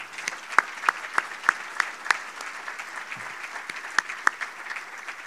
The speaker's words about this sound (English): Once again, let's give a round of applause to John.